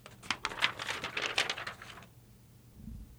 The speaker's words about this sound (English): when you hear the paper shuffling in the background. Sounds like I'm getting ready for a big segment.